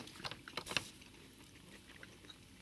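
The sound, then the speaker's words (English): Crisp crunching of someone chewing chips, a quick cluster of sharp bites in the first second, then quieter, softer chewing fading into a low background hush. “I mean, you're hearing, like, crunchy and all that weird stuff.”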